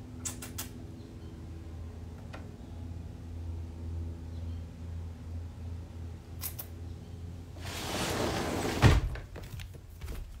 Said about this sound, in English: He can be indecisive, so I give him 10 seconds. I'm like, 10 seconds, and then I'm closing the door.